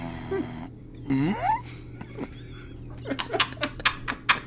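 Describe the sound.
A person imitates a cheerful whale with a brief warbling vocal call that swoops upward in pitch, followed by a run of short breathy bursts that sound like laughter.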